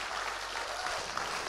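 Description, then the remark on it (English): A crowd claps steadily, a dense wash of overlapping handclaps with no clear individual beats, sustained at an even level throughout. “Come on, keep on clapping.”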